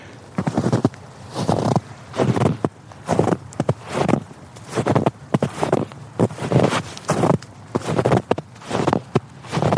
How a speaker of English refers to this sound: Whoa, listen to the crunch on this snow.